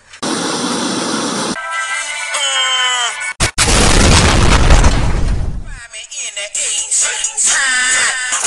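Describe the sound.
A loud, heavy booming bang on a furnace, a deep rumbling crash lasting a couple of seconds, surrounded by noisy, harsh bursts and voice-like sounds.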